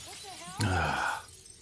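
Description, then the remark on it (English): A sudden loud crash of a mirror's glass being smashed, with a burst of breaking shards ringing out for about half a second before fading. Faint voices can be heard just before the smash. “So when they smash the mirror/glass and it rewinds all the clocks back to what time it actually is or something?”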